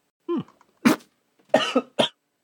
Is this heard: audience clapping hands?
no